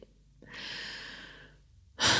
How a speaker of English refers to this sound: Yeah. Breathing is nice. That's good.